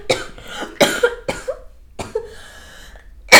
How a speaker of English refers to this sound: Also, I feel like cough coming on, so if I randomly just start hacking.